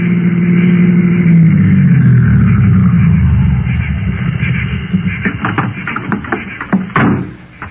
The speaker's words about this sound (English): Car's coming up the road.